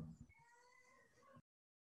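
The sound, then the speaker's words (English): A cat lets out one long, drawn-out meow lasting about a second, steady and slightly wavering in pitch, heard fairly faintly after a brief low thump, then abrupt silence. “Now the cats are getting into it.”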